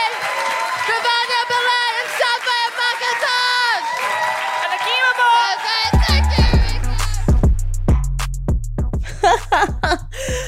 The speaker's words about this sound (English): Another round of applause for the acting team!